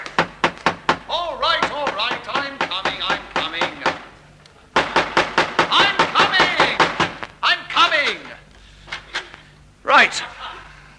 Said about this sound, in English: You knocking? I was upstairs. Oh, I didn't know if you could hear me knocking or not. Only some knockers you can't hear, can you? I suppose it's all calling how thick the door is and how light the knocker is, isn't it?